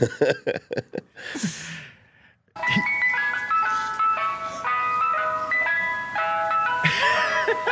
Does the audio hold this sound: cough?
no